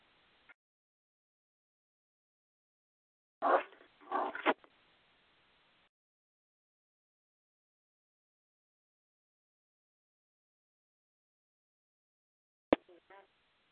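A dog lets out a quick excited flurry of barks, falls silent for several seconds, then gives one more sharp bark with a couple of yips near the end.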